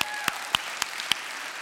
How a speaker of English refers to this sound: Would you give the Lord a round of applause for that?